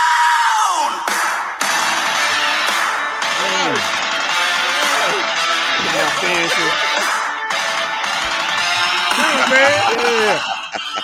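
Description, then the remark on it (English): A loud Saudi arena crowd at a wrestling event cheers and screams continuously for wrestler Seth Rollins, a dense roar of many voices with rising and falling yells and whoops layered over the top, sustained without a break. “Did you hear that crowd for Seth?”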